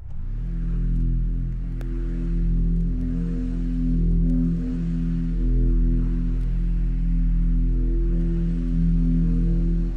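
A dark, sustained instrumental drone of layered low tones and hum, swelling gently in waves with faint static hiss above: the slow, brooding opening track of a band's first LP, in an ambient rock style. No voices.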